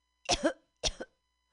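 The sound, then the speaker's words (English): Two harsh coughs from smoking weed in quick succession, each a raspy burst with a short second push, separated by a brief pause and followed by silence. “This is a cough from weed.”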